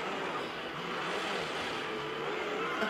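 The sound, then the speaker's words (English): A car engine roars steadily during a risky driving maneuver, its pitch climbing and sliding as it revs, over a constant wash of road noise for a few seconds with no voices. “What a risky driving maneuver.”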